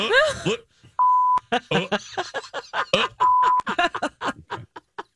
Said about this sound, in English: deep beep